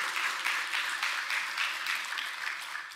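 An audience applauds steadily, a dense wash of many hands clapping at once that holds at an even, fairly loud level throughout, with no voices over it.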